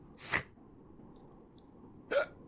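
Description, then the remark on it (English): Two sharp hiccups about two seconds apart, each a short, abrupt burst, with only a low, steady background hum between them and no talking. “No, hiccups are good for radio.”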